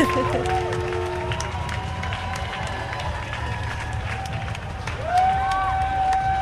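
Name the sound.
parade crowd clapping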